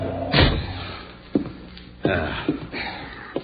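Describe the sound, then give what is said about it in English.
A door is kicked shut with a heavy slam, followed by a few softer knocks and thuds as it settles in its frame. “Kick the door shut.”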